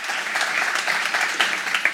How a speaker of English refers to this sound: Let's give him another round of applause real quick.